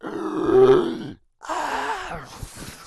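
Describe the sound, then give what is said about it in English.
Loud, strained screaming at the end of a message from Genesis personnel, in two bursts split by a short silence; the second burst grows harsh and noisy, breaking into crackly static by the end. No words are spoken. “And you hear screaming and”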